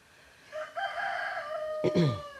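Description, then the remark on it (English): A rooster crows once outside in a residential neighborhood in the morning, a drawn-out cock-a-doodle-doo rising and breaking at the end, heard alone with faint outdoor background and no talking. “The one thing I notice about this house is the amount of small birds and butterflies and roosters that make themselves known here.”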